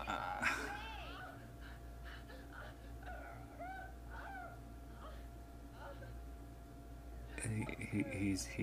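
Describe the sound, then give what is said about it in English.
A man whimpers and whines in a series of high, wavering, pleading cries, like a begging dog, over a low steady hum, ending in a louder, harsher burst. “he's really begging like a dog.”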